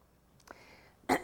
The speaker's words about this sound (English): Forgive me if I'm coughing a bit and sniffling. I got really sick about 4 weeks ago, and I'm still getting rid of it.